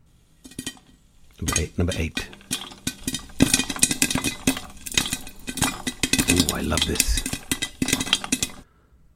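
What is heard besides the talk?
popcorn popping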